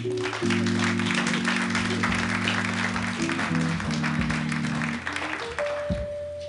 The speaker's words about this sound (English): Let's give another round of applause for the ….